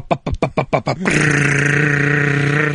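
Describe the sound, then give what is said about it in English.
A drum roll: a quick run of about eight buzzy, rhythmic beats, followed by a loud, steady droning tone that holds to the end, with no talking. “And you're going to drum roll. Drums, please.”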